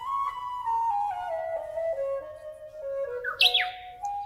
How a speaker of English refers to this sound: Singing practice every morning with the warbler. Even the warbler's voice gets hoarse.